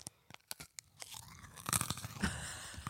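Brittle crunching of a honeycomb chocolate bar: a few sharp cracks at first, then a dense, louder run of crackly snapping and splintering, with no voices.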